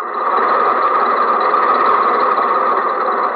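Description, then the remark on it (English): A large bus engine idles steadily at a railroad crossing while a train blocks the track, a continuous, fairly loud mechanical rumble and hum that holds even without change for the whole stretch, with no voices. “The bus has to pass the railroad crossing, too, and the train is at the railroad crossing.”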